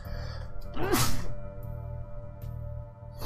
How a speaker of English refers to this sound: Okay. Oh no, friends, I have to sneeze.